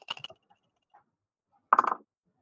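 Four dice clatter and rattle across a hard surface in two short bursts, a brief quiet gap between them, with no voices.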